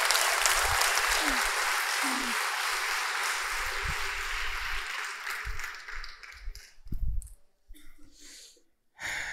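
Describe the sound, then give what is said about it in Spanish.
A large audience applauds steadily as a round of applause to God during a church service, a dense wash of clapping that holds for several seconds, then thins out and breaks into scattered claps before dying away. “¿Cuánto le pueden dar un aplauso a Dios por eso?”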